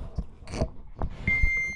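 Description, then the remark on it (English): A phone gives off a single steady, high-pitched electronic beep that starts partway through and holds to the end, after a few scattered thumps and rustles. “Is that my phone? That's your fucking phone, yeah?”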